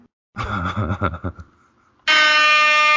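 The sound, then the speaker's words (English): A loud, steady air horn blast cuts in abruptly at full volume, as if its start were chopped off, following a short wavering voice-like sound and a brief lull. “Wow, it skipped over the first 2 seconds of air horn.”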